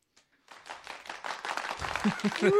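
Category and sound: sound effect, clapping sound effect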